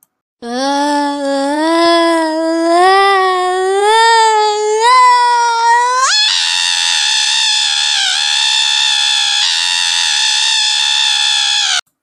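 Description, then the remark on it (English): A child cries loudly and continuously, the wail rising in pitch before breaking into a sustained, shrill scream halfway through, with no talking. “That's just what it sounds like, an annoying child screaming that's just out of control, doesn't know how to shut up.”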